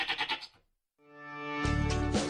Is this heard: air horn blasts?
no